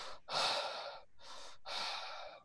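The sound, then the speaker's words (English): Heavy, raspy breathing heard over a crackling walkie-talkie: four loud breaths alternating in and out in a steady, labored rhythm, with no talking. “And then you just hear heavy breathing.”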